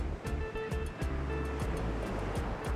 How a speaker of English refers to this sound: There, Cozumel ran out of south, and all that lay before us was the sudden wind and the open sea, filled with the most stunning cobalt waves I had ever seen washing over the jagged reef.